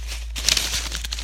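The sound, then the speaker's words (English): Paper crinkles in a quick burst of crisp, crackling rustles, starting after a brief quiet moment and continuing irregularly over a low steady hum. “Crinkling a paper.”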